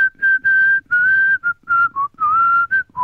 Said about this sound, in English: I think I should probably include this bit in the podcast. Just the bit of me whistling.